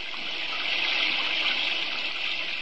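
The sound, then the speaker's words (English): Heavy rain pours down in a steady, dense hiss that stays loud and even throughout, with no voices over it. “I ducked out of the rain into the Hamilton Building arcade.”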